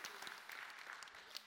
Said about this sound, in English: Yeah, then applause is fine right now. Yeah.